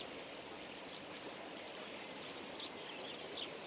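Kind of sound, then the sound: nature, flowing river water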